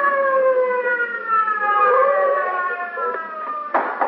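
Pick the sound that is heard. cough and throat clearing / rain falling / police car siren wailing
police car siren wailing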